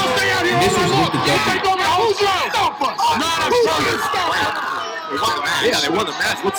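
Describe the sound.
A large crowd roars and chants together, reciting the words word for word as the music comes on, many voices blending into a loud, sustained sung-along wall of sound with shouts rising above it, steady in volume throughout.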